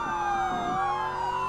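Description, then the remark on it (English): Wailing sirens from FDA cars chasing a vehicle on a highway, several overlapping tones sweeping slowly up and down at a steady, loud level with no speech over them. “Yeah, not even those FDA cars chasing us.”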